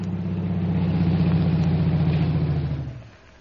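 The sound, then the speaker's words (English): An aeroplane waiting in a field idles with a steady, low, throbbing drone and a rough mechanical rumble, holding even for about three seconds before dying away to quiet. “Why, there's an aeroplane in that field. It's waiting for you.”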